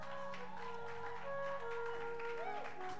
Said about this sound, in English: Oh, put your hands together for him. Thank you. Your hand clap is too weak.